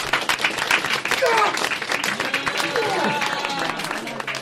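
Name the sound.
audience applause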